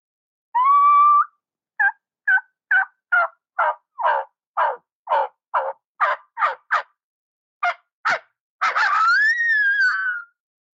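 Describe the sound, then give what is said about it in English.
A reed turkey call, worked with the jaw and tongue, imitates a hen: one drawn-out note, then about fifteen short, evenly spaced yelps that grow sharper and choppier as the jaw relaxes, ending in a longer, raspy, rising bark. No talking. “So if I was yelping and if I just start relaxing my jaw and my tongue, you'll hear it transition from a yelp to what I use for the bark.”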